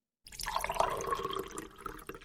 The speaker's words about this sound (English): We'll pour here. Pour a little coffee out for Proxmox.